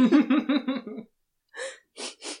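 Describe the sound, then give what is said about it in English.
A wavering, voiced hum-like sound fades out, then after a brief pause come three short, breathy sniffs through the nose, the last two in quick succession, as someone gets a little closer and sniffs for a smell of horse manure. “… gets a little closer and sniffs.”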